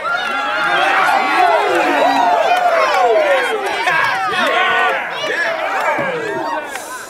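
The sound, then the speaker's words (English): A large concert crowd cheers and hollers wildly just as the band abruptly stops playing a shred metal cover, many overlapping voices whooping and yelling at once in a loud, sustained roar with no break throughout. “The band stop abruptly. The crowd go berserk.”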